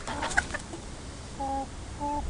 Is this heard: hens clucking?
yes